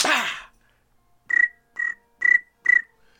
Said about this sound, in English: Man, they got quiet in that room. You can hear crickets. All you heard was this.